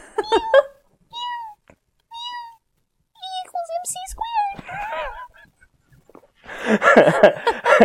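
A kitten meows several times, clear: short, high, wavering cries spaced apart, ending in a rougher, noisier burst of sound.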